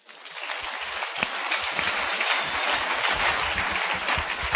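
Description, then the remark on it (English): A crowd applauds in a dense, steady wash of many hands clapping, starting abruptly and holding at an even, fairly loud level, swelling slightly toward the end, with no voices standing out. “Clap for them.”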